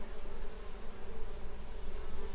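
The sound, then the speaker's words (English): A steady, continuous buzzing of bees hums throughout, a dense droning tone that stays fairly even in loudness with slight wavering, as if from several bees. No one speaks. “This week, to mark World Bee Day on the 20th of May, we're talking about bees and why they're so important to our ecosystems and economies.”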